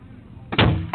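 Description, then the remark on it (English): Gunshots heard from inside a car, the count reaching 14 shots: after a low, quiet rumble, a loud, sharp burst of gunfire erupts and rings out, followed by another abrupt blast right at the end. “14 shots. 14 shots.”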